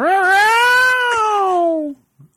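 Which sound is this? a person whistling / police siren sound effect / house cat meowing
house cat meowing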